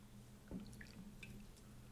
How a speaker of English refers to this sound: Let's go ahead and rinse out these with your black Bud Light. Just pour a little bit of Bud Light in there.